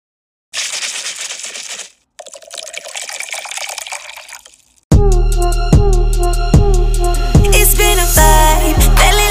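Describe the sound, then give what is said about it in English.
Sparkling water is poured into a cocktail glass to top off a Patron Silver Ranch Water cocktail in two hissing bursts with a brief pause between, then loud rhythmic music cuts in and carries on to the end. “Now, if you want to add the orange liqueur, which is optional, you can after you top it off with the sparkling water.”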